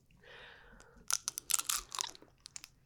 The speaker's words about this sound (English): And it's worth like doing with kids because it is cool when you take the bite and it becomes crunchy.